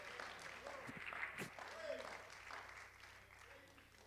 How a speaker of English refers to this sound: Clap your hands.